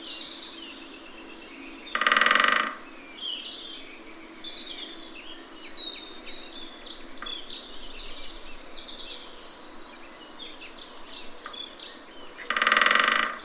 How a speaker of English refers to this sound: And then there are the other sections of the orchestra, the percussionists. And the great spotted woodpecker is the leading one here.